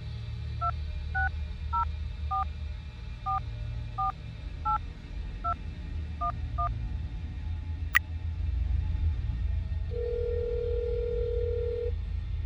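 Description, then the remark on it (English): A quick series of about eleven touch-tone beeps dials a number, then a click and a steady two-second ringback tone sounds over a low, constant background rumble. “It rang.”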